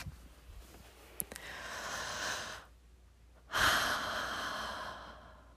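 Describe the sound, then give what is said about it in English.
A slow, deep breath: a long airy inhale, a short pause, then a stronger, drawn-out exhale, with no one speaking. “I realized I hadn't been breathing, like, all day.”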